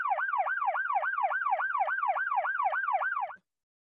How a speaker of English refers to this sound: Fire up the siren. We're going to see who we have to call the cops on.